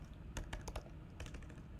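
Quick, uneven keystrokes clatter on a computer keyboard, a burst of several taps followed by a short pause and another cluster, moderately quiet with no voices.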